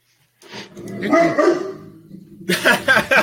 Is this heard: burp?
no